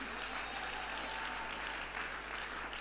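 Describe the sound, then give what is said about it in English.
An audience claps steadily as they celebrate the Lord, a dense, continuous patter of many hands at moderate loudness with no pauses, filling the whole stretch without any talking over it. “Are you clapping or you are trying to clap?”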